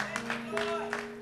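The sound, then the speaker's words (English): Scattered hand claps of praise from a church audience during a worship service, several sharp bursts in an irregular rhythm over a steady low organ-like hum, with no one speaking. “That deserves a hand clap of praise right there.”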